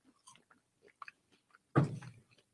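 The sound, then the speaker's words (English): Crunchy biting and chewing of a chocolate-covered cricket: a few soft mouth clicks, then a loud crisp crunch about two-thirds of the way through, fading into quieter chewing. “How the fuck did we end up eating bugs?”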